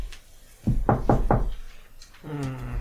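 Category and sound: impact, knocking on a door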